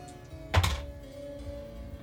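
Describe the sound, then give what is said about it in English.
A single brief clatter of many dice tumbling onto a tabletop, a dense burst of clicks and a dull thump lasting under half a second, then only faint hum; the dice are rolled for damage. “That's a lot of dice.”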